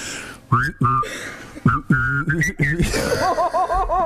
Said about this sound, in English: Can you whistle and hum at the same time? Not really. Okay, I can.